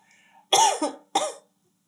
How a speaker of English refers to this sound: Yeah, I just need to like let one cough out so I can clear my throat, but then my abs hurt and so I have to hold them in, like my guts are spilling out.